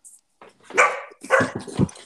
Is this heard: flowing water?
no